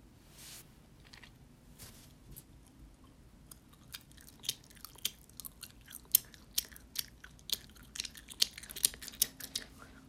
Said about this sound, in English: You see, right about now would be when my grandma yells at me to stop chewing like a cow. Just saying.